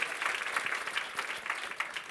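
An audience claps steadily, a dense patter of many hands at moderate volume that holds evenly throughout without any voices rising above it.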